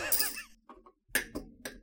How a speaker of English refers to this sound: Put something in the jar again. You didn't even need to say it. I heard the rattling of coins.